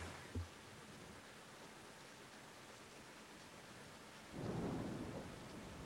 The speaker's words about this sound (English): Oh, rain. This is the rain.